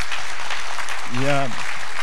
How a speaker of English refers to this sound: Дайте им аплодисменты. Please, give them a hand of applause.